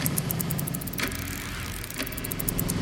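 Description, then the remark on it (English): A motorcycle engine drones steadily throughout, a low, continuous rumble at moderate volume, with faint regular clicks recurring about once a second on top. “I find a dark spot to park the motorcycle.”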